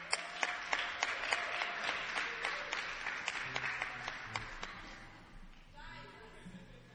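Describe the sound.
An audience clapping hands in a steady, fairly brisk rhythm of sharp claps, fading somewhat toward the end, with a murmur of voices underneath.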